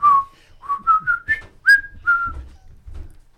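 A person whistles a short melodic tune, a series of clear rising and falling notes in quick succession, fairly close and loud with no talking over it.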